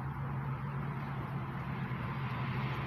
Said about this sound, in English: I'm in a car, man. It kind of stinks.